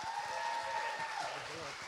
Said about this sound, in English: Hey, well, let's keep clapping. Let's give Jesus one big hand clap. Come on.